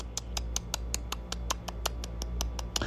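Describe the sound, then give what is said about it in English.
A stopwatch ticks in a fast, steady rhythm, about fifteen crisp clicks in under three seconds, over a faint low hum with no voices. “Y'all ever see that show 60 Minutes, and all you hear is the time ticking?”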